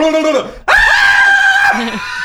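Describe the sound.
A voice imitates the scream of a female ghost said to appear in hotel rooms at night: a short low vocal sound, a brief pause, then one loud, piercing, sustained shriek lasting about a second before trailing off.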